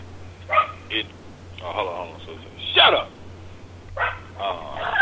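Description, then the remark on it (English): A dog barks repeatedly in short, irregular bursts, about six barks over a few seconds, fairly loud, with a steady low electrical hum underneath. “And dog just hasn't fucking stopped barking yet.”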